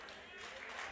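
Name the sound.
audience clapping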